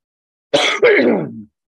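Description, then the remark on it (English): A loud cough in two quick rasping bursts, the second longer and trailing off, with no talking around it. “I'll have to cut these coughs out.”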